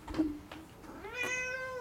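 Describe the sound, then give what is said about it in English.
A male kitten in Portland, Maine meows: a short, soft chirp, then one drawn-out, high-pitched meow that rises and holds. No one speaks. “And then move ourselves aboard with our lovely kitten.”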